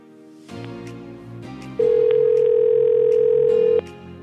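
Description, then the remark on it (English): A telephone ringback tone sounds once, a loud, steady electronic beep held for about two seconds over a low background hum, with no one speaking. “You don't answer your phone number. Oh, he better answer.”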